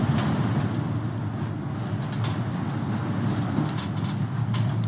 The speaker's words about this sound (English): The cable car rocks back and forth, swaying 50 meters over the ocean, and I find a prayer on the wall.